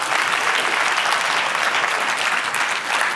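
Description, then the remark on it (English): Sustained audience applause fills the space, a dense, steady wash of many hands clapping at once, loud and continuous with no voices standing out. “But one more big round of applause.”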